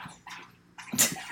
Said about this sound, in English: Dogs are drinking water, dogs are coughing. I'm not even going to cut this out.